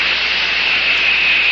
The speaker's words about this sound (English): That jet of fresh, pure moisture stands for the new, all-new Raleigh 903 cigarette.